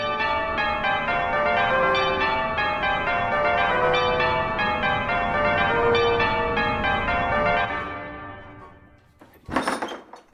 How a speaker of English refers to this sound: Let's ring on the doorbell